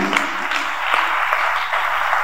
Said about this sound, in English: Come on, clap your hands for the revelation you are receiving.